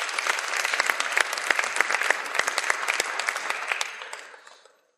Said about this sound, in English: So please give everyone a round of applause, folks, for sharing that.